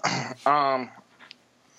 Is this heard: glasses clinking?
no